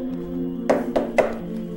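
Three quick, evenly spaced knocks on a door, moderately loud, sound over a steady low background hum, with no one speaking.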